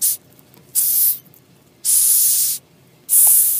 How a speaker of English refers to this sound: The largest species can grow up to 3 inches long, or 7.5 centimeters. This is what a hissing cockroach sounds like.